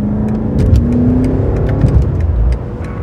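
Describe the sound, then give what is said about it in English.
The engine of Gladwell's own 2003 BMW M5 sports sedan revs loud, a throaty, steady drone that climbs slightly in pitch and then eases off near the end, with no talking. “and we're doing it at the wheel of Gladwell's own 2003 BMW M5.”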